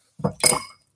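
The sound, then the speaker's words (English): Ice cubes from the freezer clink and rattle into a glass holding 2 ounces of Blanton's whiskey for a cocktail, in two quick bright bursts, a brief clatter of hard cubes against glass with no talking. “After that, you ice it down.”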